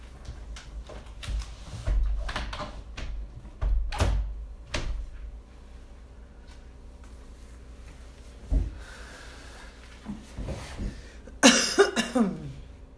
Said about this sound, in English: For those of you who are concerned about my cough, it's actually a chronic cough. All right? If you're all wondering.